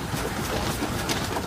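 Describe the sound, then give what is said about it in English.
A dense, continuous rustle of many wings flapping at once, a busy fluttering texture that stays steady and fairly loud throughout, with no voices. “The sound of a lot of flapping wings.”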